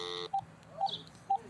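Touch-tone dialing on a broken phone: a brief buzzy tone followed by three short, evenly spaced keypad beeps, clear, with no one talking.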